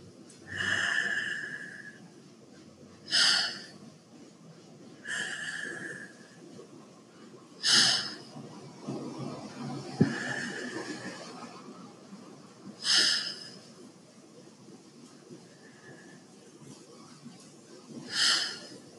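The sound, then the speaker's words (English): Airy deep breaths, inhaled and exhaled in a slow, steady rhythm with short pauses between them, taken during a guided healing practice. Roughly eight soft, hissing breath sounds, with no talking. “And allow yourself to take 5 deep, slow breaths, as if you're the only one here breathing, allowing yourself to fully take in and to fully let go.”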